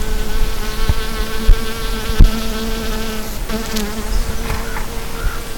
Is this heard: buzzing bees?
yes